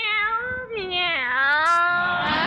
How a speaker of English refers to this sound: Meow, meow. Look at Minerva. She looks like the cat that swallowed the canary.